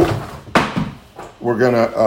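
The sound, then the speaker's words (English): A book drops with one sharp, solid thump, then a quieter knock follows. Before and after, a person talks in a low murmur, and clearer speech comes in at the end. “Okay, just dropped my book.”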